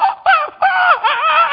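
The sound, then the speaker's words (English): A voice imitates panicking monkeys with a string of shrill, wavering screeches in three or four quick bursts, high-pitched and loud, with no talking. “The monkeys start to really freak out.”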